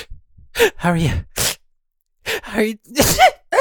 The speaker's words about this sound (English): You didn't have to sneeze on me. Well, get out of the way. It's all up my arm.